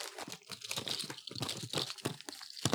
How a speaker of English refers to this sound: Oh, where's the bugle bag? It sounds more like them when the bag's open.